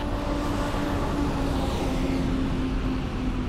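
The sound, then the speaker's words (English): A steady, dense roar of passing vehicles fills the space, a constant loud rumble with a faint engine drone running through it and no voices. “The sound of the traffic can be quite overwhelming, really, right, when you're trying to navigate.”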